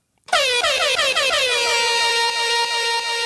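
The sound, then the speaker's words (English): A loud, sustained air horn blast erupts abruptly after a brief silence, with rapid warbling pulses at the start before settling into a steady, piercing blare lasting about three seconds. “Give me an air horn.”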